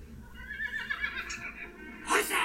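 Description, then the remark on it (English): A horse whinnies loudly with a quavering, wavering call that rises and falls, then ends in a sharp, breathy snort. “Horses! Horses!”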